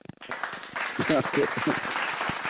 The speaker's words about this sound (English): I'm going to take you out with some claps.